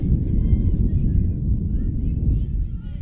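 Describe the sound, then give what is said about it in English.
Strong wind gusting in from center field at a baseball game buffets the microphone in a loud, steady low rumble that fills the whole stretch, with faint voices barely showing through underneath. “The wind really gusting in from center all of a sudden.”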